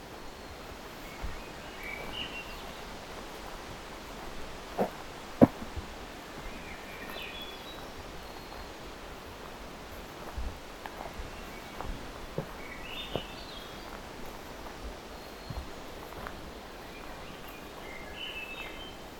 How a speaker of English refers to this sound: Swainsons I don't have much experience with. They're a thrush, which means, well, they're one of the forest thrushes.